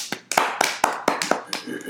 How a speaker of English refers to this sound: So we need to put another round of applause in for Colin Kaepernick.